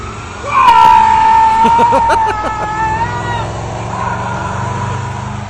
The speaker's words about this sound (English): He is maxing that fucking Amazon Prime truck out to the max with that motor.